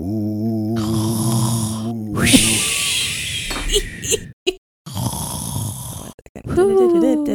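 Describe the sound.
Exaggerated snoring performed by a voice, a few drawn-out rasping snores mixed with whistly, humming tones, broken by brief silent pauses.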